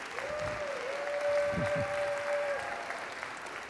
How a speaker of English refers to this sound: I always think it's amazing. You guys clap, and I haven't said a word yet.